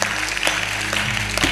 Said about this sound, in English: Amen. Clap your hands if you heard what I said.